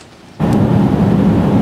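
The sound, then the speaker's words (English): Heavy rain suddenly comes in loud and dense after a brief quiet moment, a steady roar of downpour with a deep rumbling undertone, a storm pounding outdoors at a Christmas tree display in Dunderave. “The rain is pounding down, and around the province, there are a number of weather warnings.”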